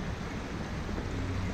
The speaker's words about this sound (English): So there's a bit of water flowing because we've had a bit of recent rain lately,